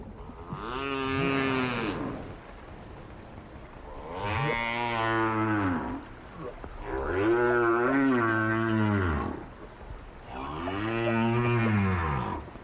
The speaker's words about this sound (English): We leave you this week in the company of right whales, snoring. Recorded by Roger Payne.